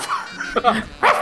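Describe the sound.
A person imitates a dog with a few short vocal barks and yips, roughly two quick bursts in a little over a second, fairly loud against a quiet background.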